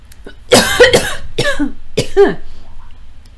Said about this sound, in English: And those of you on the and those of you on the stream heard it. That is what you call a cough. You did not get the pleasure of hearing that.